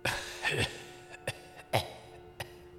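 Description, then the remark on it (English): Faint, dry coughing from a room with a light, an intensive care unit: a few short, scattered coughs at irregular intervals over a steady low hum, with no one talking. “You hear faint, dry coughing.”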